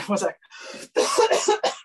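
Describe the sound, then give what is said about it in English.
A loud burst of coughing, several harsh rough coughs in quick succession with a brief throaty pause between them, heard on their own without talk. “sorry, I just have to cough.”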